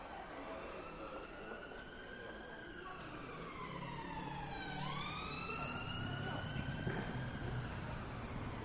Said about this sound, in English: As you can tell from the specific frequency of that police siren and the sound of footfall, I'm in Shoreditch, East London.